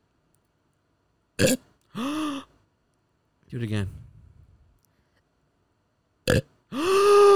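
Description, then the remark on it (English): A loud, drawn-out belch rumbles, followed by a voice asking for another, then a second short burst and a deep, throaty burp to finish. A person is burping on cue, on request. “I can burp on cue.”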